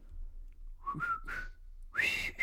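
human body sound, person whistling a tune

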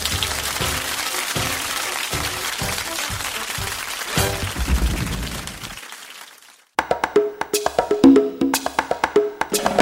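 crowd, applause

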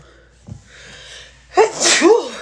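human body sound, sneeze

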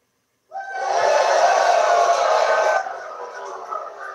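crowd, crowd cheering sound effect

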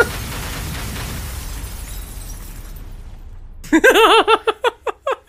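sound effect, glass breaking

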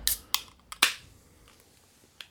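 food or drink, beer being cracked open

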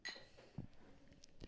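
household object, drinks clinking together

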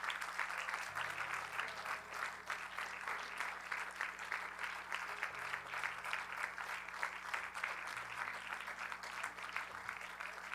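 crowd, audience clapping hands

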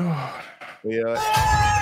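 animal, cat meowing

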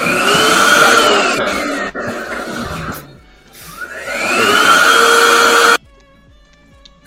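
household object, vacuum cleaner running

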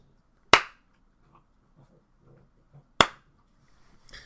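human body sound, hand clap

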